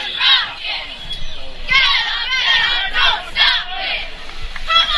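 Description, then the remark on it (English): A sparse crowd cheers and shouts in rising, overlapping bursts at a night football game between the Lions and Marple Newtown at Harry Harvey Stadium, in the rain, with the Penncrest Band and Marple Newtown cheerleaders present; high, excited voices swell and fade several times over steady background noise. “It's a sparse crowd tonight here at Harry Harvey Stadium, but of course the spirit of Penncrest Band and the Marple Newtown cheerleaders in full effect as always.”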